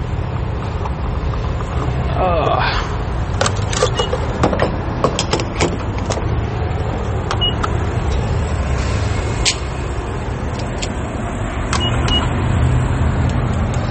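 Steady low rumble of a car engine and tire noise on the road, continuous throughout, with occasional clicks and light rattles inside the cabin.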